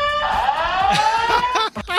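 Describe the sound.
A fire alarm in a TV studio blares a steady, buzzy electronic tone that rises slightly in pitch and holds for over a second, with people's voices breaking in as it cuts off.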